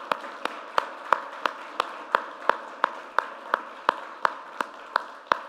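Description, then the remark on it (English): Audience applause at a church for the tech AV team, with a steady, even rhythm: around fifteen sharp claps land at regular intervals over a continuous wash of crowd clapping, and nobody speaks. “you probably don't think about this team unless something goes wrong, but can we give our tech AV team a big hand clap for everything they do?”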